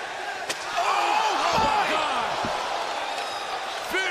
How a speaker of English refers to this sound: A chair shot right to the side of the head of Cody, who couldn't even get his hand up. It caught around the corner of his eye, couldn't get his hand up to protect himself.